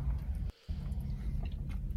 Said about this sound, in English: I don't like the sound of his chewing.